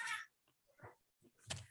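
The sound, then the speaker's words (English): Cats make a brief, faint commotion: a few scattered thumps and scuffling bursts, one sharper bang near the end, with no talking over them. “My cats are like losing their shit in the background.”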